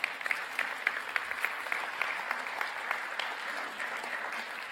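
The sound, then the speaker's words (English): A church audience applauds steadily after a prayer at a child dedication, many hands clapping at once in a dense, crackling wash with sharp individual claps popping out, sustained at a fairly even level throughout. “Someone's trying to clap. You can certainly clap for that.”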